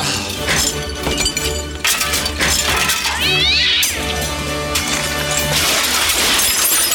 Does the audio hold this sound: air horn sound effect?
no